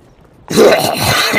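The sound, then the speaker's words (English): After a moment of silence, someone abruptly jolts up and bursts into loud, harsh coughing and sputtering, coughing out water, lasting about a second, alone. “you are hit with a slap patch and you are just adrenaline just surges through your body as you just jolt up, coughing out a bit of water.”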